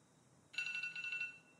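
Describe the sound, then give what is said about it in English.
An electronic phone alarm rings in a rapid, pulsing burst of bright, high-pitched tones, starting abruptly and repeating evenly for about a second before fading. “Your alarm to stop your... Stop the podcast.”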